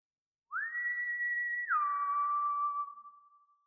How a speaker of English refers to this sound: My eyes widen as he whistles, terrifyingly again, a beat of silence, and then again, that whistle.